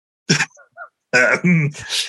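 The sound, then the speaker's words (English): A person coughs: one sharp, harsh burst, a short pause, then a longer, rougher throaty cough that trails off into breathy, raspy noise. “Sorry, I got a bit of a cough here.”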